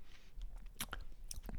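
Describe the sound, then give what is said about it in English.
Quiet sipping of scotch from a glass: a few short, wet slurps and mouth clicks spaced irregularly over a faint background hush, with no talking. “Well, let's take a sip. Oh, wait, and cheers.”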